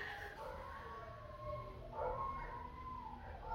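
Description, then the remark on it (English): Several dogs howl in a neighborhood, their long wavering cries overlapping and rising and falling continuously against faint background noise, with no one talking. “I don't understand why there's always dogs crying around this time in my neighborhood, but it is.”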